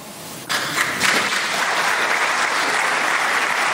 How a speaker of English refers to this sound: And of course, he gets a nice round of applause.